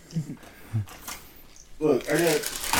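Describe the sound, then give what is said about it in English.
Paper towels rustle and crinkle in a few short, scratchy bursts, followed by a person talking loudly over the last part. “Look, I got paper. It's good. It's good. It's absorbent.”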